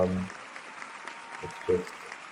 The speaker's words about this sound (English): Kill of the week! Yeah, so a round of applause there for Terrifier.